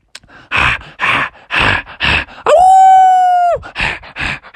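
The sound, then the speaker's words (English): A voice telling a story imitates the heavy breathing of the White Wolf: a steady run of loud, rhythmic, huffing pants, interrupted midway by a single drawn-out, high voiced whine before the panting resumes. “And soon they could hear its breath.”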